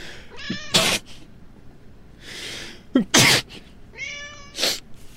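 A cat meows three times, each high, wavering cry followed by a sharp, noisy burst like a sneeze or hiss. Fairly loud, with no talking.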